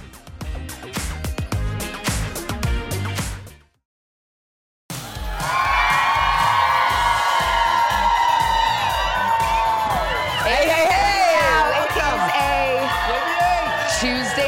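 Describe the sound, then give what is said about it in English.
A loud outdoor crowd cheers and whoops steadily on a morning in June 2022, with Jenna Bush Hager present, shouts and high-pitched voices rising above a dense roar, following a brief burst of rhythmic music and a moment of silence. “we stepped outside, got a beautiful crowd, made all the more beautiful by the lovely Jenna Bush Hager.”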